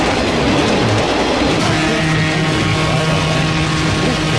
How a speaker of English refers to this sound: And there he goes. Once again. He's driving that train down the highway. I don't know how he does that without ruining his wheels.